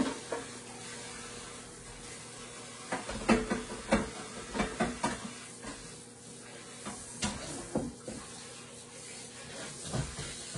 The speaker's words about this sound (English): You can hear it popping and sizzling. Hopefully it won't get everywhere in the microwave.